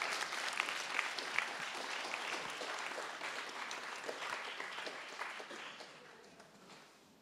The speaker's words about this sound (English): Great. Give my friends a round of applause. They can just wrap that up.